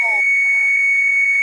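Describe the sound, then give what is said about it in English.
After zero is pressed on a phone to reach the front desk, a fax machine's answer tone comes down the line: a single steady, piercing high-pitched whine that holds without a break, opened by a brief lower warble. “Well, that was a fax. That was a fax line”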